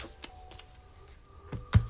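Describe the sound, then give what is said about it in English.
A deck of cards being shuffled by hand, heard as a few soft, papery taps and clicks spread across a quiet moment, with a slightly firmer slap near the end. No one speaks. “Just going to shuffle the cards a little bit, see what the focus is today.”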